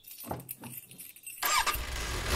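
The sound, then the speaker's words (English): A sports car engine cranks with a few low stutters, then bursts into a loud roar that keeps revving steadily to the end, with no voices. “Here, it's my fancy sports car. Get in.”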